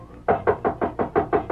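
Seven quick, evenly spaced knocks on a wooden door, firm, following a brief quiet moment. No one speaks.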